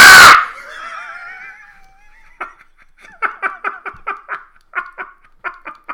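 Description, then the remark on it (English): A person lets out a sudden, loud, shrill screech in imitation of a hawk. It wavers as it fades, then gives way to a run of about ten rhythmic, breathy laughing bursts. “Yeah, well, in my head, it was the sound of a hawk. But it probably came out a bit more chimp.”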